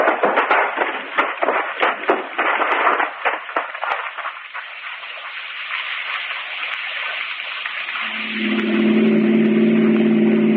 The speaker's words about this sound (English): Pull over and stop then. Douse your lights. Keep it running.